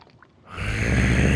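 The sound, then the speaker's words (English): After a brief near-silent moment, a man lets out a loud, rough, drawn-out groan that swells and holds steady. “He groaned and then mumbled.”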